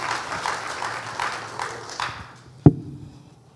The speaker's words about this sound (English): Praise the Lord, everyone. Come on, let's give Jesus a hand clap of praise for just being God in our lives.